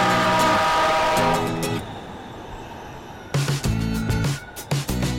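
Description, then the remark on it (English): A train arrives with a low, sustained mechanical roar and bright tonal whine, fading briefly before loud clanking and screeching bursts return. “Next train arriving.”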